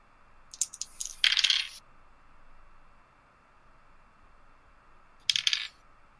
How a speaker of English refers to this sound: Okay, I'm done rolling dice now. That's 5 successes because 4 of them exploded.